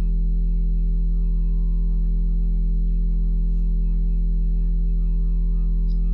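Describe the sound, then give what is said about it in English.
A single low note is hummed and held steadily for the whole stretch during a meditative singing exercise, even in loudness, with no breaks and no other sounds around it. “And once you find a good moment, just take a pause from the hum and just notice.”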